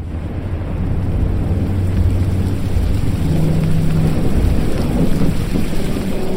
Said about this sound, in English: We were against the storm for 3 days and three nights before our fishing vessel, the Portland's Pride, finally sank.